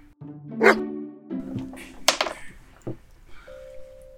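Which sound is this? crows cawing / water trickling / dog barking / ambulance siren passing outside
dog barking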